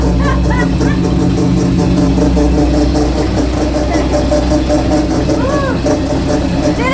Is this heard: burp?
no